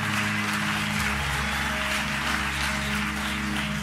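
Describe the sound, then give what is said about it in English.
An audience claps their hands together, a dense, sustained wash of applause at steady loudness, with a low organ-like hum droning underneath throughout. “I mean, clap your hands, wave your hands, jump for joy.”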